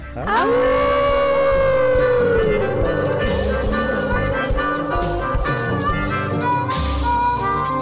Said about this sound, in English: On the count of three, the howl of the Moondog. One, two, three.